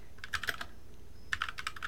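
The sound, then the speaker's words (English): Two quick bursts of crisp, clicky keystrokes on a computer keyboard, about five taps each separated by a short pause, fairly quiet, with no talking. “Sorry about my really clicky keyboard.”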